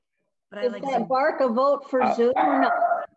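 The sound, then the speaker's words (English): A dog barks in a quick run of about four drawn-out, yowling barks that nearly run together, fairly loud, with no one talking over it. “But is that bark a vote for Zoom?”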